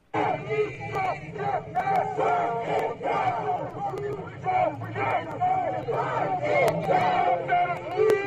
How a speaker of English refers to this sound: Protesters chant near the White House, if we don't get justice, burn it down.